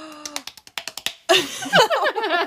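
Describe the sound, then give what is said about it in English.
Hands slap cheeks in a quick run of about ten hollow, tonal pops, their pitch shifting from one slap to the next, then excited talking and laughter take over. “It's just like slapping her cheeks.”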